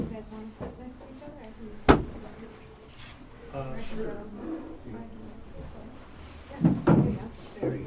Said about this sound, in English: I might just need to shuffle chairs around a bit.